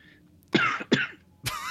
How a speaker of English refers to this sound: I do have quite a bit of a cough, but I think it's from smoking like a pack a day for like 3 days. So it's probably from that, right?